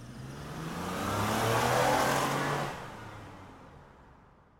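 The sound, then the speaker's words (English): A car engine hums and swells as the car drives closer and pulls up to a house, its low drone peaking before easing off and fading as it slows to a stop. No one speaks. “pull up to Zeke and Jeff's house and jump out of Angela's car.”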